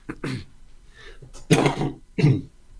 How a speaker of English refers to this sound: Excuse me, a cough.